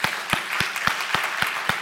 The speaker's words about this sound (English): Now, as we begin, I need you to do me a favor. I need you to put your hands together, okay? Do this.